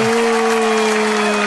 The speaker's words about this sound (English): The audience is cheering and the staff is booing.